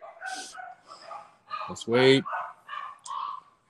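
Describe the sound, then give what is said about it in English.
A dog barks and yips in a quick series of sharp bursts, with one louder, longer bark near the middle and a few shorter, softer ones around it. “Oh shit, my dog.”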